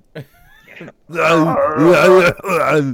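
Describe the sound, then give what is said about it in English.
A voice imitates retching while vomiting in the bathroom: a few soft, short vocal noises, then a long, loud, strained groan that wavers in pitch, breaks off briefly, and resumes. “That's me in the bathroom making calls on the big white phone, just yelling into it.”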